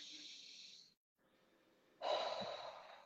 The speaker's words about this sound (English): When I was doing that breathing just now, I could feel it.